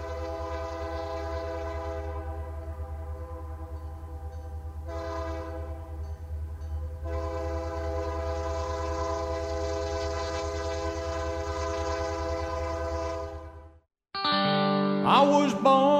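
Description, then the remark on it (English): A train horn blares in long, sustained blasts with a couple of brief breaks, over a steady low rumble of a passing train, then cuts off abruptly near the end before different, sharper tones. “Once again, I hear the cry of the blue train.”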